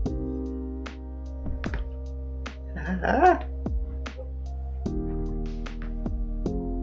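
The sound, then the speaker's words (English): A dog lets out a brief burst of barking midway through as someone arrives home, over a steady low hum and scattered sharp clicks. “Okay, with that, guys, my sister just came home and my dog's gonna bark.”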